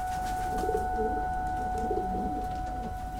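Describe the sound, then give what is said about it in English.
Soft, low pigeon cooing repeats in a few throaty bursts over a steady background hum with two constant tonal lines. “When I come outside of the house with the pigeons pressed against my chest, you know, they're flapping, going crazy.”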